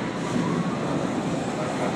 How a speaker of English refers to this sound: So I'm on the train on the way to the podcast,